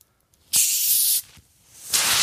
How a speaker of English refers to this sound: seltzer water is the fizziest goddamn commercial seltzer water I've ever seen in my life